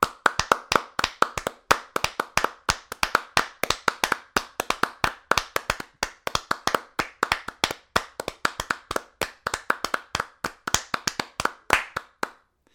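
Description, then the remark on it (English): Brisk, steady clapping goes on for about thirteen seconds, sharp distinct claps in a quick, slightly uneven rhythm, with no voices. “No, you want a sustained, respectful, exuberant applause.”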